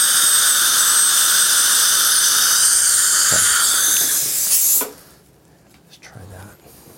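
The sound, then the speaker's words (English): A high-pitched dental drill with a diamond bur whines steadily with a hissing water spray for nearly five seconds as it shapes a tooth's mesial marginal ridge in a circular motion, then cuts off abruptly, leaving quiet with faint movement. “On this mesial marginal ridge, same thing, just try to keep the diamond moving in a circular motion.”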